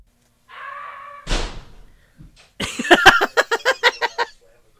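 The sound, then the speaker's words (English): A door slams shut with one loud, heavy bang, preceded by a brief creaky tone and followed by a quick run of sharp, rhythmic clattering bursts. “shut the door.”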